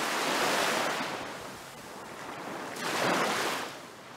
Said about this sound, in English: We would sit eating our watermelons sprinkled with salt, feeling the wind off the lake spray water on our faces and listening to the waves crashing against the bottom steps.